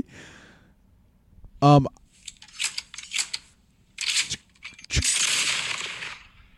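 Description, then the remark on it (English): A video game gun's hammer is cocked with a bright metallic click, followed by scattered breathy rustles, then a single sharp, loud gunshot that trails off into a long hissing roar. “There's like a, when he cocks back the hammer, that's that sound, and then he shoots. Or no, it's literally from the game.”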